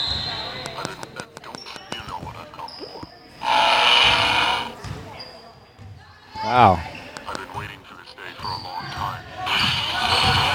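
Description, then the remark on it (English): A tinny lightsaber ignition effect from a musical happy birthday card, coming out as a sneeze-like burst of hiss followed by a short descending whoosh, with people talking around it. “It sounds like rather than igniting his lightsaber, he's sneezing.”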